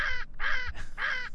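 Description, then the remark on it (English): Three harsh, raspy parrot squawks in quick succession, each loud with a short gap between, standing alone without any talking. “So, three parrots. Three in a row.”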